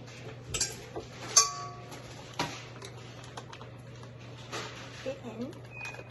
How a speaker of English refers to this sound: All right. We're going to put this in our artisan blender. So, go ahead. Put the half cup butter in the blender. Dump the whole thing in.